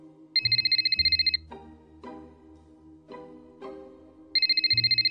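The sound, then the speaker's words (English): A telephone rings with a loud, rapid electronic trill, two bursts about three seconds apart, with a short musical melody playing between them. “Your phone just might ring.”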